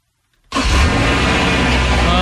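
car engine starting up

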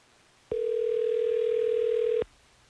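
telephone dial tone

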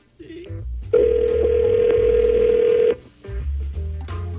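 outgoing telephone call ringing

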